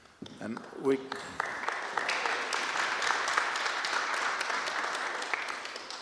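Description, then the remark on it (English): An audience breaks into applause after a prayer ends, following a brief vocal sound, the clapping swelling quickly into a dense, steady patter that holds at a fairly even level for about five seconds. “I never get clapped.”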